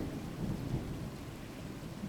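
A thunderstorm with steady rain hissing throughout and a deep, low rumble of thunder rolling underneath, fairly constant in loudness with no voices.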